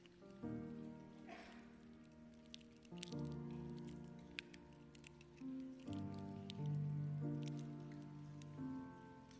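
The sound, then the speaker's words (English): Many prepackaged communion cups being peeled open at once during a church communion service to get to the bread: a scattered patter of crackly plastic and foil rustles over soft, sustained background music, with no one talking. “And so we're going to take this cup, and we're going to peel this back and get to the bread.”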